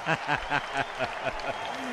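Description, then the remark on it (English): A steady wash of crowd applause for Dr. Scott Jensen, the newly Republican-endorsed candidate for governor, fills the whole two seconds. It is fairly loud and continuous, with voices talking over the clapping. “We're waiting for the applause to die down, Dr.”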